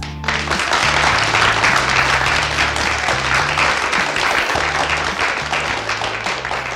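A crowd bursts into loud, sustained applause, dense clapping that holds steady for about seven seconds, with low stepping musical tones running underneath.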